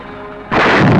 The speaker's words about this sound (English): Oh, and there goes the boat. Oh, kablooey! There's a big old explosion on the surface of the water.